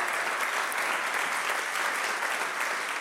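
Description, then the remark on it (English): An audience applauds steadily to honor its board members, a dense, even wash of many hands clapping that holds at a constant level throughout, with no voices standing out. “And so let's clap for them.”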